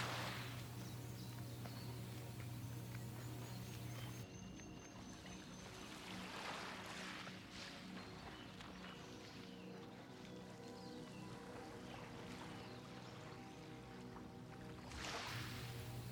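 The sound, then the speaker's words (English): Ocean waves surge and wash into a rocky cove with a volcanic stone beach in several broad, hissing swells, with a steady low engine-like hum beneath during the first few seconds. “The path leads to an ocean cove and a volcanic stone beach.”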